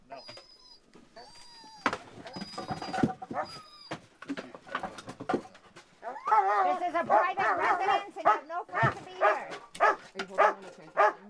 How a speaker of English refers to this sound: The attack dogs are there. There are attack dogs here. Standing there, right beside the door.